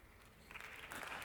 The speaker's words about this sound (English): You're like, am I allowed to clap? Yeah, you're allowed to clap at that.